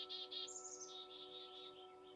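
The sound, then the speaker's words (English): Birds chirp outdoors in a backyard in a quick run of bright, high tweets, with a steady low hum underneath. The calls are fairly soft, with no one speaking. “These sermons are filmed in the place I'm lucky enough to call my backyard, so you might hear the sounds of birds, geese, roosters, trains, and wind, and sometimes my sweet pup Indy.”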